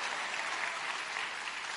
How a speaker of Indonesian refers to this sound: Tepuk tangan dong, mana yang bagian sponsor tepuk tangan tadi tuh.